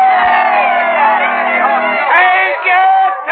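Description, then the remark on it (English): A loud crowd of townsfolk cheers and shouts continuously as they swarm to greet a floating-theater riverboat landing at the levee, many voices blending into a dense roar of whoops and yells that holds steady for a few seconds. “she noses into the landing as the townsfolk swarm to greet her at the levee.”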